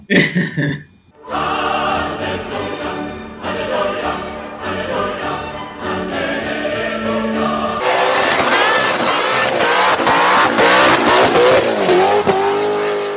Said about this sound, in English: I'll put the engine on. Yes. Right, that's the That's the noise. I'm pretty sure that nobody will notice the difference between that and the one we normally use.